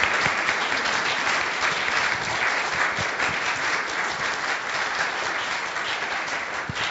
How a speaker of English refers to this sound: We welcome our newest members to this fellowship. We can honor them maybe with a round of applause.